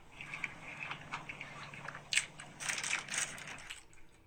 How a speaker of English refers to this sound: All right, here it goes. Like, he's taking the first bite. 3 chews, 4 chews, 5 chews, 6 chews, 7 chews. He's enjoying it.